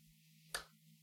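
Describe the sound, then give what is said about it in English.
A single sharp hand clap rings out once, crisp, made to sync a Zoom recording with a separate audio track, with a steady low electrical hum underneath. “But I'm going to go ahead and do a clap for to be able to link up the Zoom and this track.”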